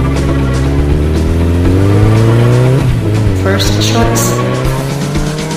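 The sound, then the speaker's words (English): A motorcycle engine revs loudly, its pitch climbing steadily as it accelerates, then shifts and keeps roaring as the bike speeds off. “I love a woman with a motorcycle. Get on. A bike is always my first choice.”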